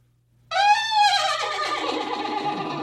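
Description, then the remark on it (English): A person imitates a horse's neigh: a loud, wavering, high-pitched whinny that breaks into a rough, breathy rasp and trails off, with no other talking. “He went, what do you think of this when the horse neighs?”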